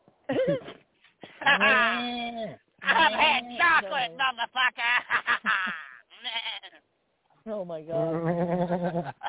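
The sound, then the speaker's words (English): A human voice does a loud, wavering goat-like scream, several drawn-out bleating cries with short breaks between them, harsh. “And then my lower jaw extracted and I screamed like a goat.”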